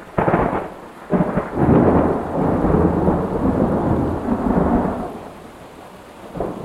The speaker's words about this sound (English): And all of a sudden we just start getting this, like this super strong wind. And then we just start getting pelted with rain.